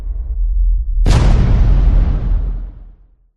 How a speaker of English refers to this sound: That something was an explosion so intense it spawned not one, but an infinite number of universes.